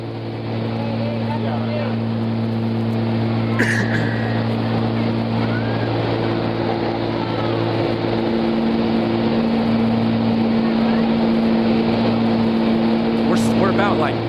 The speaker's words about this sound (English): So we made these low passes to clear animals off the runway. So now you can show the video. That's what's happening. This is our second pass.